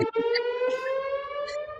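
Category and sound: signal or alarm, siren wailing outside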